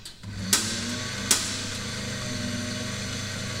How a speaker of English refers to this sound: So right now, we are blending, if you can't tell.